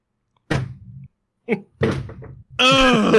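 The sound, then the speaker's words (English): A fist pounds a desk in three heavy, booming thuds with rattling low rumble, followed by a loud, strained vocal outburst. “Smashing my desk right now.”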